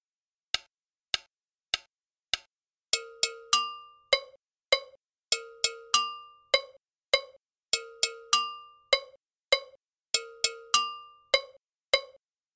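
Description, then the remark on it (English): A gankogui and a bell play an interlocking timeline: a few sparse metallic strikes open, then a steady repeating pattern of bright clanging hits at two pitches, ringing briefly, with no voices. “Let's listen to the Gankogui and bell together.”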